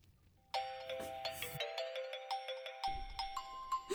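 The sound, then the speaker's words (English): A faint, familiar mobile phone ringtone plays a bright electronic melody of quick, repeating chime-like notes, starting abruptly and continuing steadily without any voices; the phone had been dropped on the floor. “I sighed heavily with relief when I heard a faint tune, one that was all too familiar to me.”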